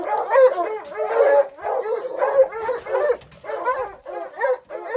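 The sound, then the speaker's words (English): Several hunting hounds in the bed of a truck bark and yelp in rapid, overlapping bursts, fairly loud, with a few whiny yips mixed in and no pauses, around 6:30 in the morning as the truck drives along the perimeter of a dewy cornfield in the Northeast Kingdom. “It was probably only 6:30 or so when we were driving along the perimeter of a dewy cornfield, and then the dogs started barking.”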